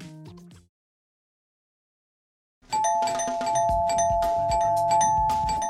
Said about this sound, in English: And we're pulling up to the Snood Candy Factory gates, where Lucy is about to ring the bell.